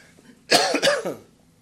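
Two quick, harsh coughs in close succession, loud, with a brief raspy tail and nothing else around them.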